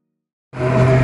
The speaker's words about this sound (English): So we decided to come see Johnny on the monster truck. And little Dominic is driving.